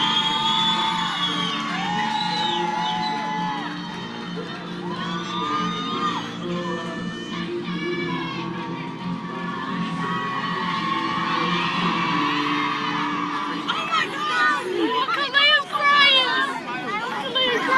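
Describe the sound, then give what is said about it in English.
At Family Day at Fort Jackson, South Carolina, a large crowd of relatives cheers and whoops wildly for new soldiers, a dense wall of overlapping shouts and high-pitched yells that stays loud throughout and swells into sharper shrieks near the end. “The crowd goes wild.”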